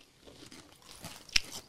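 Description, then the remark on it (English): Crunching of a crisp snack chip, several quiet chews building to one sharp, loud bite, with no talking. “Especially because this one's been crunchy.”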